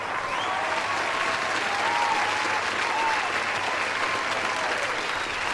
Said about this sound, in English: As Dylan is probably getting more numbers and stories at InventCon, suddenly the crowd erupts into cheers.